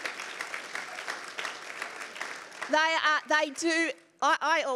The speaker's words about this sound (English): Who's been a part of that team? Everybody, let's give them a clap. Like, honestly.